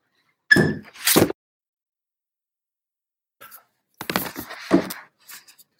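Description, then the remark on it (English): A front door is handled: two solid thunks close together, then after a pause a flurry of clattering, knocking sounds as it is opened and shut again. “Hey, the door on the front is unlocked.”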